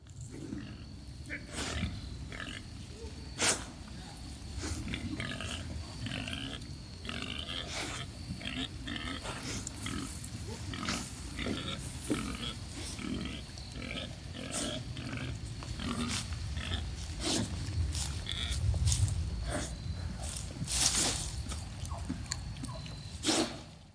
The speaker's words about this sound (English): a wild boar, a wild pig, would ravage, turn up, and destroy a garden